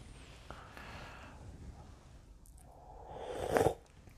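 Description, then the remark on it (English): Someone sips soup with one drawn-out slurp that swells in loudness and cuts off abruptly, after a few seconds of faint low rustling and no speech. “I'm drinking some soup, so if you hear a sipping sound, please forgive me.”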